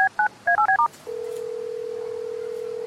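telephone keypad dialing tones

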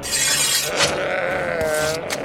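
lambs bleating

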